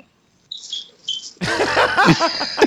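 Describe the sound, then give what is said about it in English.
A bird calls off in the distance with a pair of thin, high chirps, then breaks into a louder, busier stretch of squeaky, warbling notes that rise and fall quickly. “So that's a bird. That's not like a chair squeaking or something.”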